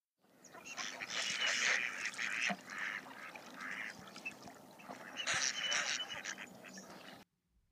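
Mallard ducks call in a dense, overlapping chorus of raspy quacks, loud, running steadily for about seven seconds before stopping abruptly. No one speaks.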